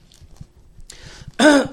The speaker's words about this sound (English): Excuse me. Please forgive my raspiness, my coughing and hacking.